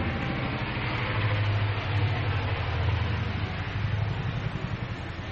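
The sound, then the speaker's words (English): A steady, heavy roar of several helicopters flying over a baseball game, with a deep throbbing drone underneath a broad wash of engine noise that swells slightly and then eases, with no voices. “Sounds like a helicopter coming over. Sounds like a bunch of them.”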